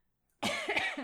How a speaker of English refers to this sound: And I'm still coughing, you guys. If you have any cough remedies, also email us, because I'm dying here. I've had this cough since like end of August.